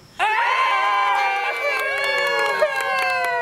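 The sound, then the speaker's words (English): A party crowd at a gender reveal party erupts into loud, sustained cheering and shouting, several high-pitched voices overlapping in excited screams that hold steady for about three seconds after a sudden start. “This video may sound like it's from any old gender reveal party, but it's from one that's a little different.”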